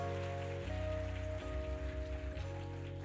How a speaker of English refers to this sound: Amen, everybody. Can we give Pastor Bell another round of applause, another hand clap?